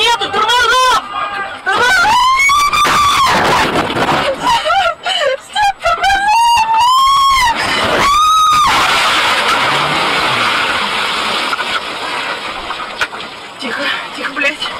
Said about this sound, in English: So it rolled out of a garage, down a hill, into a body of water, like a lake or something.